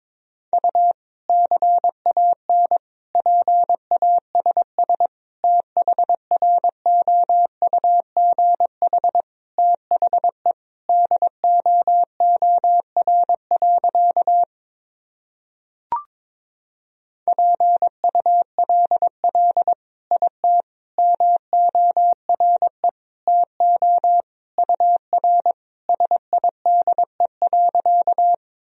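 Morse code tones sending practice sentences at 22 words per minute: a steady mid-pitched beep keyed on and off in quick dot-and-dash patterns, two long runs split by a short silence with a faint click, no voices.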